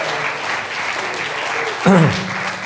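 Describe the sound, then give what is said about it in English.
An audience claps steadily in a broad, dense wash of applause, with a brief raised voice cutting through near the end. “Come on, give him a good clap off him.”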